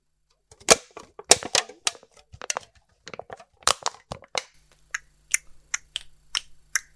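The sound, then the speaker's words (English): A metal can being handled to make a noise for others to mimic in a game, giving sharp, crisp clicks and crackles in an irregular burst, then a steadier series of single taps over a faint low hum. “This is the sound of a can.”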